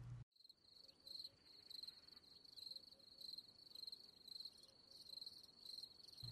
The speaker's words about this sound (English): I'm getting crickets. Yes, you are.